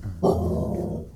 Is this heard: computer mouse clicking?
no